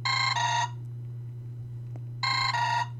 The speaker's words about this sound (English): My ringtone again. Hold on, this is the last time.